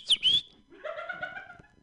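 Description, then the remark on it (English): Someone whistles an imitation of a bird call to call a flock of birds in a park: two quick, shrill chirps, then a longer rising warble, fairly loud with no talking around it. “I went to a park one time and I saw a flock of birds, so I called them.”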